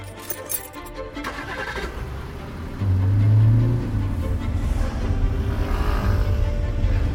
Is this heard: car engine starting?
yes